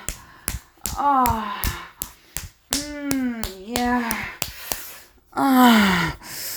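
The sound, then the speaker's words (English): Sharp, wet-sounding slaps of a hand on wet genitals repeat about a dozen times at an uneven pace, fairly loud, mixed with breathy vocal moans and gasps between and over the hits. “You want to hear me slap my wet pussy?”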